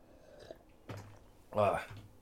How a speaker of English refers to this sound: I'm going to have to sip some coffee about it. Get a sniffle in there.